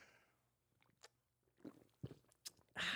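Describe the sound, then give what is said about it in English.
Quiet mouth sounds of someone sipping a red Kool-Aid mixed drink on Halloween: a few short wet slurps and swallows spaced over a couple of seconds, ending with a louder, rushing burst of noise. “How many sips did you take?”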